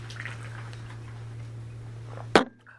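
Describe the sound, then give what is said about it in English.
A person takes a quiet sip of water, with faint wet mouth sounds, followed by a sharp knock like a cup being set down, over a steady low electrical hum. “I'm going to read for you the actions I have here after I get a drink of water.”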